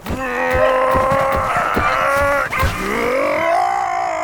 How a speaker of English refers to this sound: You can stop yelling.